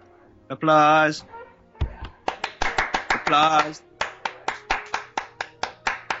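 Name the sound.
applause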